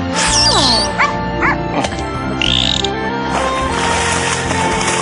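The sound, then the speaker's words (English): A few short, sharp dog barks pop up amid squeaky, whistling chirps and creaking, ratchet-like clatter, all over a steady background hiss. No one speaks. “Doing out there with that dog?”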